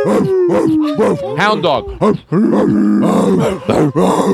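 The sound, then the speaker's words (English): A man's voice imitates a hound dog's howl, drawn-out wavering baying and groaning whines in a continuous vocal stream, loud with no clear words. “Hound dog.”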